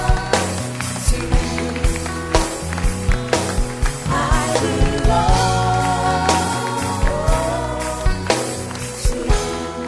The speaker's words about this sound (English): Don't stop clapping.